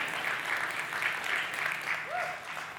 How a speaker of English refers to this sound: I'm going to clap for myself. Y'all ain't got to clap for me.